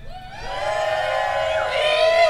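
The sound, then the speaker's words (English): A live crowd present for a live broadcast cheers and yells loudly on cue, many voices blending into a sustained, high-pitched roar that swells slightly toward the end of the burst. “But those that are listening via platforms, we are doing a live broadcast tonight, and I want you to hear the crowd.”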